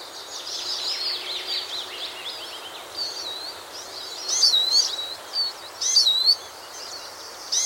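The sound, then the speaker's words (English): High, thin twittering calls from siskins, small finches, a continuous chatter with sharper wheezy notes rising above it near the end, heard outdoors with no one speaking. “So, this week's tweet of the week, siskin.”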